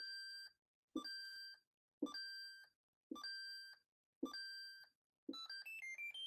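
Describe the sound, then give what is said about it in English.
A bell dings six times in a steady, roughly once-a-second rhythm, each bright ring sustaining briefly before stopping; the final ding sounds more jumbled and warbly. It is rung as a thank-you to Lee Manning for a Cash App donation. No voices. “You get the bell.”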